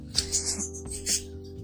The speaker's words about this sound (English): Look, y'all hear my birds.